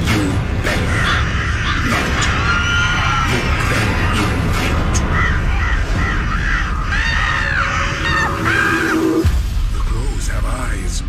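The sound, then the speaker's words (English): A loud, dense flock of crows darkening the sky in the middle of the afternoon caws nonstop, harsh calls overlapping with shouting and screaming voices amid a heavy rumbling din that cuts out abruptly near the end. “The crows have eyes.”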